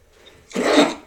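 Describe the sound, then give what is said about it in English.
A single sudden sneeze bursts out after a brief quiet moment, loud and breathy, lasting under half a second before fading away. “Bless you. Sorry.”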